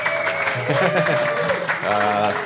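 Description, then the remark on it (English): A small audience claps softly and steadily for a couple of seconds for a woman who is in the back, a light patter of hands running beneath a voice that keeps talking over it. “The queen, if everyone can give a soft clap for the queen, she's in back.”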